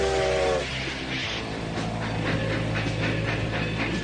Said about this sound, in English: It's a steam engine. They stopped them 20 years ago.